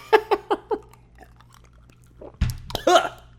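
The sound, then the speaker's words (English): Choking and sputtering on water: a quick run of four short, throaty coughs, a brief pause, then harsher, louder coughs and a strained, wheezy gasp. “I'm choking on my water.”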